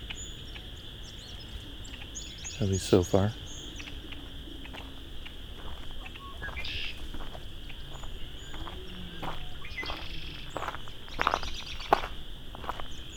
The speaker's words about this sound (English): It's only about 5 red-winged blackbirds, maybe. Oh, this is a small patch, so. Sometimes you get huge flocks coming in for the night to roost together. You get into hundreds, maybe even thousands of blackbirds. This is a small, modest group.